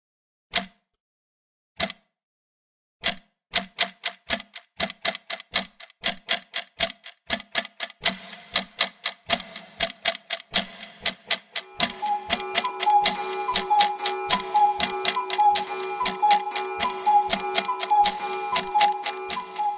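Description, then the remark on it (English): A very large clock ticks loudly, its sharp, evenly spaced ticks speeding into a steady rhythm, with a sustained tonal hum joining underneath about halfway through. “That's the biggest clock I've ever seen.”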